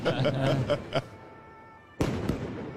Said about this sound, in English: Oh, they're fireworks. Yeah.